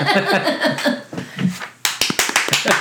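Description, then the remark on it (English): A man's light, polite golf clapping: a short run of evenly spaced, crisp claps at a steady pace, following a moment of indistinct voiced sounds. “Oh, he was golf clapping for everybody.”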